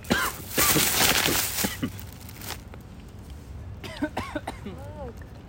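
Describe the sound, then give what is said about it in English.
A burst of harsh coughing over the first two seconds, then a quieter stretch of strained, wheezy gasps and groaning breaths with rising and falling pitch. “One thing about these new motherfuckers, they go wheezing, coughing.”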